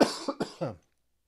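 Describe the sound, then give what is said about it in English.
A clear burst of coughing, about three or four rough coughs in quick succession, then silence. “So I apologize for coughing in your ears”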